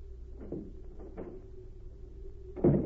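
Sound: door opening and closing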